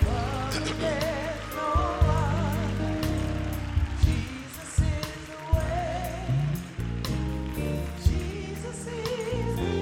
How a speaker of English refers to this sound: Y'all not clapping your hands enough. Come on, clap your hands for them as they come. Come on, do that better. Clap your hands for them.